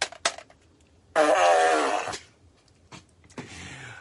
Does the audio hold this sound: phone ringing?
no